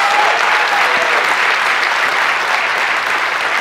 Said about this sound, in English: But if y'all wouldn't mind just giving him a round of applause for all the hard work he goes through.